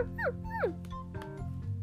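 Two quick, high-pitched yips from a fox, each sliding downward in pitch, clear over a steady low background hum.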